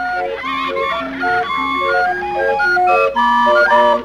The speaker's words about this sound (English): Love that music. Penny whistle sounding carnival music, whatever.